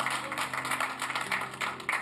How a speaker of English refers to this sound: I think you should clap for that one. Just clap for that one.